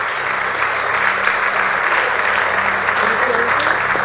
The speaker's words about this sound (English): Can you give the Lord a hand clap? Un aplauso al Señor.